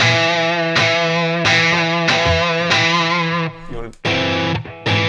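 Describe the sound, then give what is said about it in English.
Loud, heavily distorted electric guitar chords, played with gain and distortion for rock using both upstrokes and downstrokes, strummed in a steady rhythm, each stroke ringing thick and fuzzy, with a brief choked pause near the end before the strumming resumes. “So I've got gain. We're back in the room. Gain. We got some distortion.”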